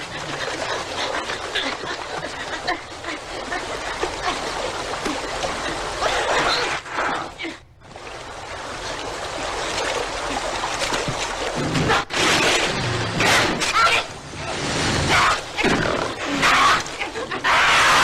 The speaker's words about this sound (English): You get a couple minutes of this cougar chasing the bear, and the bear is squealing